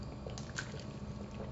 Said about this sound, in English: I'm taking another swig of water.